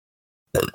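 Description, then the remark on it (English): A single sharp sneeze bursts out after a moment of silence, loud and sudden, then trails off quickly. “Bless you.”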